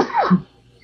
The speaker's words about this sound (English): Bless you, man. Thanks. But yeah, like, I mean, sneezed all the chew out of my mouth.